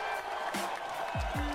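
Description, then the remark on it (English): An audience applauding and cheering on the Zaboys radio show, a steady wash of clapping with a few whoops, loud and continuous throughout with no talking over it. “Oh, it is very good to hear the applause of all you out there listening to us on the Zaboys radio show.”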